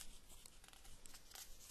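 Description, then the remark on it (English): A soft paper rustle as a page is turned to the next math problem, number 10, a few light crinkling bursts over under two seconds, with a brief sharper flick at the end and no talking. “Turning the page, number 10.”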